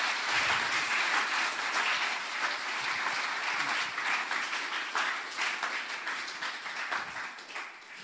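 A big round of applause from a crowd, dense steady clapping that holds strong for several seconds before tapering slightly toward the end, with no voices over it.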